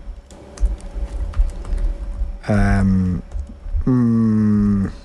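Quick, uneven keyboard clatter fills the first couple of seconds, close and moderately loud. It is followed by two long, low, droning tonal sounds that cover the rest.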